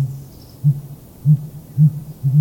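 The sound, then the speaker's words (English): Deep, low-pitched hoots from a male sooty grouse calling in spring from a concealed perch high in a tall conifer, five muffled thunking notes spaced roughly half a second apart over a faint steady hum, with no voices. “Known as hooting, it's a very low-pitched, 5- or 6-note thunking sound.”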